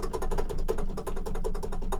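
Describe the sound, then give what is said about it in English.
Rapid, steady clatter of keys on a computer keyboard, loud, with quick clicks tumbling one after another for the whole stretch and no voices. “And yet your keyboard is really loud, so there's no need to, like, pretend.”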